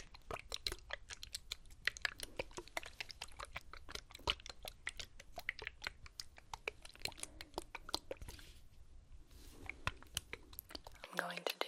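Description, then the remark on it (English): A semi-clear misting spray bottle with a pastel pink cap puffs quick, crisp bursts of spray into a towel, a steady rapid rhythm of short soft hisses with a few slightly longer sprays toward the end. “some spraying sounds, spraying into a towel so that we don't alter the connection here.”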